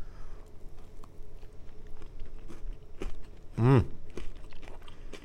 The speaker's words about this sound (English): Mmm. I love the crunch of the Oreo. Yeah. So good. Oh, it's so moist.